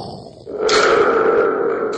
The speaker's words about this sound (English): Somebody chided me the other day because I haven't been using the Thunder Tube enough. I'm like, I'm sorry, man. You can't overuse the Thunder Tube.